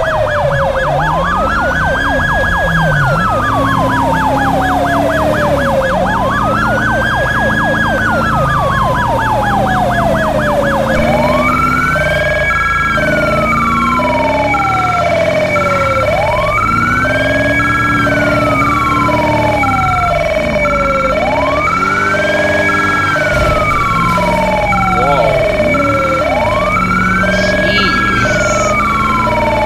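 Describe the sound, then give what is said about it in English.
A loud police car siren wails up and down in slow, regular sweeps, joined about a third of the way in by a rapid, steady pulsing tone. No one speaks. “I know that pinging can get annoying for some people on the high level.”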